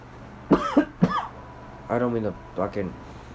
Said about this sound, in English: But it tries to do with the pollen or whatever. I'm not sick or anything, but I'm just, I just have allergies. That's all, basically, and a cough, basically.